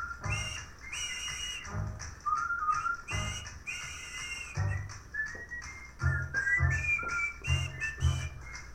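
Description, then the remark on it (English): Someone whistles a lively melody in clear, sliding notes over an upbeat jazz recording, with a bouncing bass and steady rhythmic beat underneath throughout; no one speaks. “I just love playing that song and trying to whistle to it as well.”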